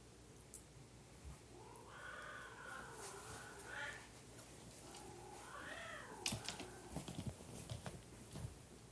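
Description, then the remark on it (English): Two long, wavering cat yowls rise and fall in pitch, drawn-out caterwauling from a tense standoff, followed by a burst of sharp scuffling and hissing as the cats clash. “Even cat fights.”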